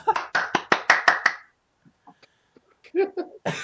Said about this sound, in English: Oh my god, Josh leaves and we literally start clapping to ourselves.